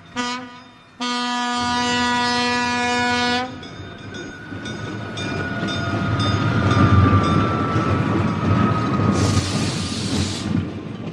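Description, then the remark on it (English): The New York Super Chief passenger train, with service from Salt Lake, Denver and Kansas City, sounds a loud, steady multi-tone horn blast for a few seconds, followed by the heavy rumble and rising clatter of the train arriving on track one at a station, with a high hiss of brakes near the end. “The New York Super Chief, with service from Salt Lake, Denver, Kansas City, and Point East, is now arriving on track one.”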